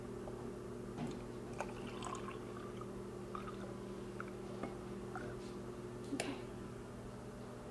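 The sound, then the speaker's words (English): Water trickles and splashes into an Angry Mama container that vinegar and water are being put into, with scattered drips and small clinks over a steady low hum, no one talking. “Now we just dip the water in.”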